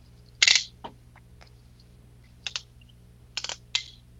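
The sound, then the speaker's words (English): Sharp plastic clicks from the strong ratcheting joints of a transforming action figure being moved into cat mode, a loud burst of clicks followed by scattered pairs and single snaps with pauses between, over a faint low hum. “It has lots of strong ratchets, so. It does. They're nice and loud.”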